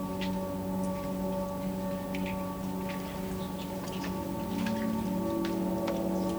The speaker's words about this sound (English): So I'm hesitant to open my door and go out on the porch. I'm going to do that right now. It's raining.